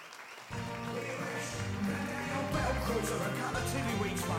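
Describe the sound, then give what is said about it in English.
After a brief silence, a crowd bursts into sustained applause and cheering as Alderman Melvin Tear is introduced, a dense, steady wash of clapping and voices that stays loud until the end. “Give him a big cheer.”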